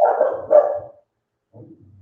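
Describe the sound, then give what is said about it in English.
A pet dog barks twice in quick succession, fairly loud, followed after a short pause by a softer, lower grumbling bark. No one speaks over it. “My dog agrees with you, John.”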